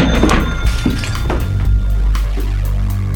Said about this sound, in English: This simply would not do, so with the strength of two dried-out drunks, I glommed a hold and tossed the lousy prick into the cash register.